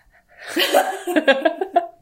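A person imitates their own shallow, rapid mouth breathing, a quick series of breathy pants with a slight voiced edge, lasting about two seconds.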